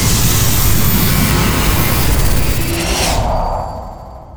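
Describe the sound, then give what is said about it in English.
A loud roar of an aircraft engine fills the air, a dense rushing drone that suddenly loses its hiss near the end and rumbles away more quietly; a plane heading straight toward the characters in the Big Finish Sixth Doctor audio drama Scorched Earth. “Doctor, that plane... Ah, it's heading this way, isn't it? Very much so. Incoming!”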